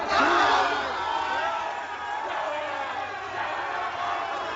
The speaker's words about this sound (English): the crowd starts cursing and chanting F that Trump